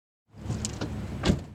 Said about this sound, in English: Just got back into my car after leaving the fireside.